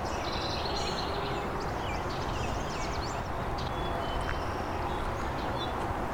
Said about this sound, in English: It's another house wren. Hear black-capped chickadee singing in the background too. And white-crowned sparrows.